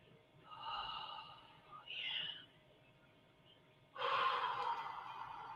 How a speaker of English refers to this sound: The deep, deep breathing.